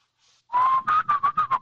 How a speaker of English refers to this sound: Can you guys whistle? Yeah. Whistle for me